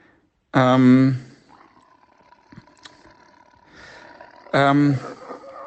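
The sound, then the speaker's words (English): Two loud, short roars from a white tiger cub, each about half a second long, a few seconds apart, in a kitchen, with a faint background hum in between. “Look, I've won a white tiger cub in a game of poker. And I'm sitting in my kitchen with it now.”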